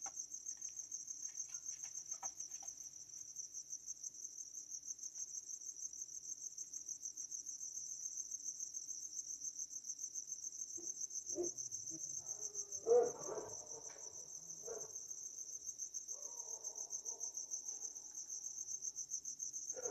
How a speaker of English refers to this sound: Okay, so hope you're enjoying the crickets.